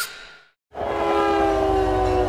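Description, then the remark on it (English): A freight train horn in a train yard fades out, drops to a moment of silence, then blasts loud and sustained over a heavy low rumble of the passing train. “When my daughter ran off to hop trains, I was terrified I'd never see her again. So I followed her into the train yard.”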